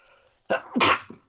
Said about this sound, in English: Yeah. Excuse me. I tried to mute, sorry. That's okay. Couldn't quite do it. But there's somebody out there whose kink is you sneezing on the podcast.